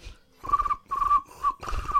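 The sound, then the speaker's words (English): A person imitates crickets with four quick, whistly chirping bursts in a steady rhythm, each a shrill trill with brief pauses between. No one talks. “Turkeys, crickets. …, I can do crickets better than that.”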